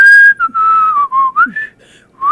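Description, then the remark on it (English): Someone whistles a short, wavering melody with sliding notes while walking away, fairly loud, broken by brief pauses between phrases, with no talking. “Well, you're whistling and you're walking away.”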